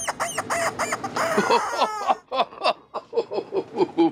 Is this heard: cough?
no